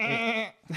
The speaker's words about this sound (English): For this podcast, I have brought in some goats.